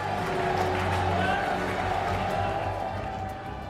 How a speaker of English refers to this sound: He gets onto the stage again, opens the envelope and says the words, Qatar. And you can hear this small group of Qataris led by the then Emir, Sheikh Hamad, cheering.